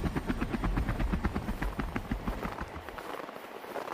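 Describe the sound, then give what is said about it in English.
The engines of Santa's sleigh, about to take off, run with a fast, steady, rhythmic chugging pulse, loud and continuous, gradually thinning and winding down toward the end as they are shut off. No one speaks. “Rudolph, kill the engines!”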